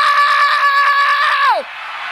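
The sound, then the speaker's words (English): A crowd shouts "No!" together in unison, loud, the massed voices holding for over a second before falling off sharply at the end. “If you really need to get free, you need to scream it.”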